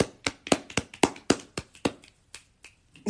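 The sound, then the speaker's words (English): A run of sharp finger snaps, about a dozen in quick, slightly uneven succession, crisp and bright, then a few sparser snaps trailing off, with no talking. “Snapping.”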